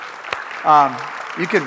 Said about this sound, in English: The louder you clap, the better it is for me.